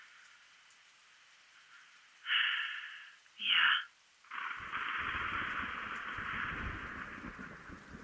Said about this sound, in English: Did you hear that? The thunder? Yeah, must be a storm rolling in.